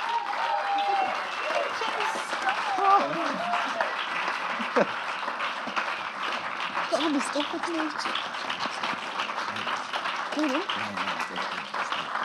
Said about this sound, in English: that you couldn't hear your name over the rapturous applause.